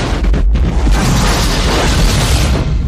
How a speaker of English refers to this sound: And it also creates the space for John to do the thing with the monitor and the C4. And then there is a huge explosion, which in 1988. I feel like this is the biggest explosion I had ever seen. Yeah, it was pretty massive.